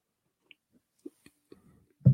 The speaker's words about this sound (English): You have a very distinct swallow. Have you ever told you that? A couple people. It's like a good gulp. Like a I always take big giant swigs.